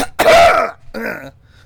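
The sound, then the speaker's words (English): A loud cough in two bursts: a harsh, raspy hack followed by a shorter, throatier second one, with no talking around it. “And you covered up your chipping of him with a cough.”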